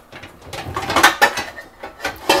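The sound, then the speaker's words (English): Large, tall rectangular metal loaf pans clatter and scrape as they're pulled out, a quick series of bright clanks and rattles, with no one talking. “Actually, we're going to get out my bigger loaf pans because the mixture is definitely going to do better.”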